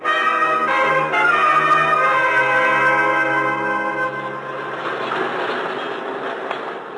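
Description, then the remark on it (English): A subway train pulls into a station with a loud, steady whine of layered tones that fades after a few seconds into a broad rumbling roar, heard from the platform. No voices are heard. “On the subway platform, I took the obvious precaution.”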